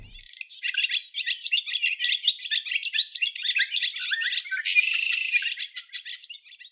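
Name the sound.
birds chirping and singing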